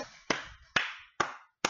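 Four sharp hand claps at a steady, unhurried pace, each a crisp loud smack followed by a brief fading ring, with no voices.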